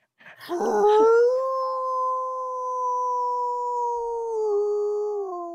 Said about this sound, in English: It's not a wolf, man. It's an actual wolf.